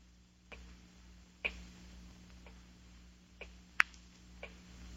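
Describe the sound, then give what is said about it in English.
A clock ticks steadily, sharp dry clicks about once a second, a few louder than others, with a low hum underneath and no voices. “Terrible clock. Ticking. Ticking.”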